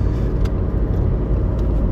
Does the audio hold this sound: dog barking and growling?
no